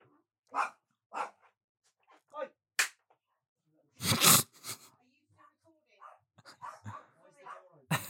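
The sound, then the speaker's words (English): A dog barks repeatedly in sharp, separate bursts, loud, with one louder double bark midway; quieter voices murmur toward the end. “I'm really sorry, my dog has just started barking.”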